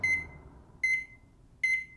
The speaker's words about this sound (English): Saved by the Bell! Or beep. Ouch! My poor fingers! Wow, thanks, microwave,